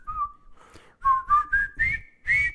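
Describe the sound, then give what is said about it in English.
Several people whistle a tune together in a short melodic phrase of rising, pulsing notes, the overlapping pitches sounding slightly ragged over a soft noisy background. “Now whistle along, everyone, because it does seem like there's like a chorus of whistlers.”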